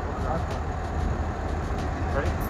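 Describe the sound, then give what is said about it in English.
A steady, low engine rumble of a shuttle bus running, heard from inside, with a constant droning hum and faint rattling that holds at an even level throughout. “I walk on that shuttle bus.”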